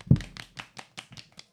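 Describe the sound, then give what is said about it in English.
Soft, polite hand clapping, about eight quiet claps in a slow, steady rhythm, fairly faint, with no talking over it. “Golf clap for this guy.”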